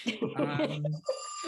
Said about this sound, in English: Hold on. Our landline phone is ringing.